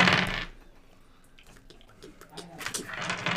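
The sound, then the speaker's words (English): d20 dice clatter and rattle on a hard tabletop, a burst of quick clicks at the start, scattered taps in between, then another busy tumble of rolling dice at the end. “No, I only have my 4 d20s, and I've rolled terrible on all of them.”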